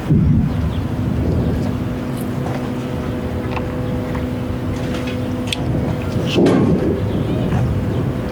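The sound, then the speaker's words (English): Deep, rolling booms of explosions in Gaza rumble continuously over a steady low droning hum, with a sharper, louder blast bursting out near the end. “More explosions.”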